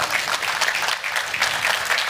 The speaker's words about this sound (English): If you're gonna clap, go ahead and clap. Go ahead.